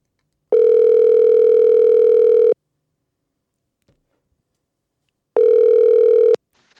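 A telephone ringing tone on the line as a call is placed: a steady electronic buzz sounds for about two seconds, falls silent for nearly three, then rings again briefly. Fairly loud, with no voices.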